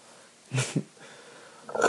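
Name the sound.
burp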